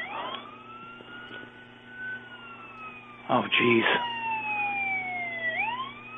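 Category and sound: vehicle, emergency vehicle siren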